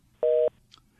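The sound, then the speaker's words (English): A single short electronic beep, a steady mid-pitched tone lasting about a quarter second, as a caller's phone line disconnects, followed by quiet line hiss and a faint click. “So I just got a doop, and he's gone.”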